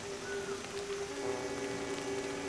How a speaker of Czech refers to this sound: Visoko iznad sebe čuješ zvuk pljuska koji pada po debelom lišću krošnje.